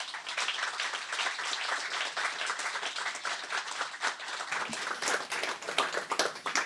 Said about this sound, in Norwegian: Så gir hun en stor applaus.